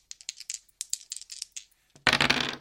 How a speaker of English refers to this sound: Alright then, well that's a quiet move, and your character is quiet, so you get to roll two dice. Remember, you need to roll a two or more.